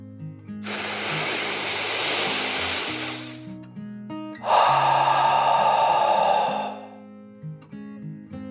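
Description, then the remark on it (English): A long, deep breath drawn in, then a slower, louder, slightly voiced breath out, over a soft musical backing with no talking. “With a yawn, Guillermo took a deep dragon breath in and out.”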